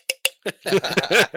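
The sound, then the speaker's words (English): Two quick glassy clinks of beer bottles tapping together, followed by a burst of soft laughter and chuckling. “Should we clink our beers like?”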